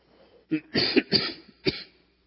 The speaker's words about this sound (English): I'll just tell you. This time of year, the trees bloom. And I sneeze and cough. So I'll try to make it through. I better get another one of these out. I'll try to make it through with as little coughing as possible today.